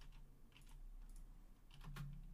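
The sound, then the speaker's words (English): Rapid clicking of keys on a computer keyboard, an irregular flurry of light taps over a low steady hum, with no one speaking. “You're really struggling with typing.”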